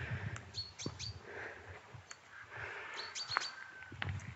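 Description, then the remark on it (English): Male chaffinch song outdoors along a path by old quarries: bright chirps and short trills scattered across a few seconds, over a soft background of ambient hiss and low rumble, with no one talking. “There we go, that's the male chaffinch's call, song.”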